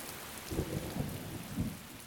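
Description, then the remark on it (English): Steady hiss of rain fills the scene while low rolling rumbles of thunder swell and fade several times, giving a dense, stormy backdrop with no voices. “Heavy day-long rains, whitewater rivers, deep puddles to stomp in, rocks and logs to overturn in search of tiny amphibians, fierce thunderstorms, meandering streams, the smell of rain on hot concrete.”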